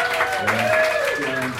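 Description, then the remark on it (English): Steady, dense audience applause for all the guests of the evening fills the whole clip at a fairly loud level, with a voice faintly audible underneath the clapping. “Let's hear a nice round of applause for everybody here.”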